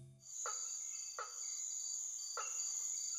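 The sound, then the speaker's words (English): In the Amazon, a frog gives three sharp, wooden knocking calls at uneven intervals from some distance away, like someone nailing boards on a roof, over a steady, high-pitched insect drone that runs throughout. “I realized I had so many frogs that I thought I would just devote a podcast to frogs”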